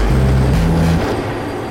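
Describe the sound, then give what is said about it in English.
A bus pulls in with a loud, low engine drone whose steady hum shifts pitch partway through, then eases into a rumbling idle under broad road noise. No one speaks. “Thought you were waiting on the bus.”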